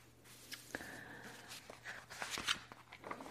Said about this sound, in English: So, I like when they water the finger, like this. So, as we are turning the page, okay, pay attention.